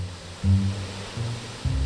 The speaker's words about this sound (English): Lots of water is cascading down from a man-made hillside right next to an overpass. Don't forget, this entire park, all the grass, the bushes, trees, the rocks, they've all been put here by people.